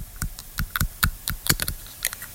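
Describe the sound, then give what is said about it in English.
An ASMR recording of someone chewing on a pen, making a quick, irregular series of sharp plastic clicks and crunches, about a dozen in two seconds, fairly soft with no voices. “A person chewing on a pen.”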